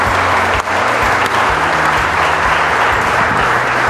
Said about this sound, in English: Keep that clap going.